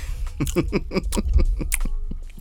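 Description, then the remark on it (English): Crunchy chewing of chips right up against the microphone, a quick run of crisp bites and grinding crunches in a steady rhythm, fairly loud with no one speaking. “The good crunch on the microphone.”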